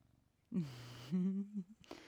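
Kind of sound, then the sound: animal, cat purring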